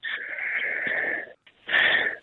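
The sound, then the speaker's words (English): Wheezy, raspy coughing: one long strained hacking fit lasting over a second, a brief pause, then a shorter, louder rasping burst. No talking over it. “You're coughing.”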